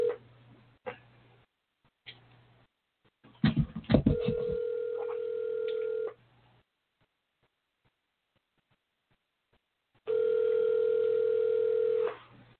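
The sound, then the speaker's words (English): An outgoing phone call ringing: after a few connection clicks, two long, steady ringback tones sound through the line, separated by a pause of silence, with no one speaking. “I'm going to call and see if she answered the phone, because she didn't call in, because I want her to talk about her mama before I start talking about her mama.”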